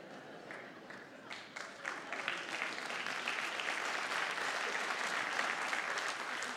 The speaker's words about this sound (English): I heard the claps.